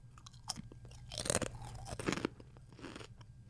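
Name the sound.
crunching on potato chips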